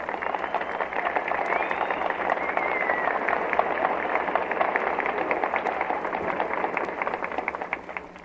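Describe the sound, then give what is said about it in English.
Sustained applause from a large outdoor concert audience at the Lincoln Memorial steps, acknowledged by a singer after her song: a dense, steady wash of many hands clapping at once with scattered sharper claps, holding fairly loud and even throughout without any voices on top. “Again, … goes to the concert stage to acknowledge the applause of this tremendous audience.”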